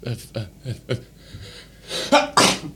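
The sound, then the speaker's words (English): Four quick, rhythmic breathy catches build up, then a loud, sharp sneeze from a person with a cold bursts out in a hissing double blast at the end. “bless me. Bless you.”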